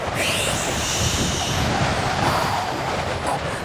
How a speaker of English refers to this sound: Wow, this wind. I know, right? Gaia is pissed off. I can feel it.